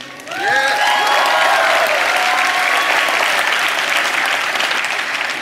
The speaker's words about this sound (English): My brothers. My sisters, my friends, The great gift of your applause is not for me, but for yourselves. Therefore, applaud yourselves.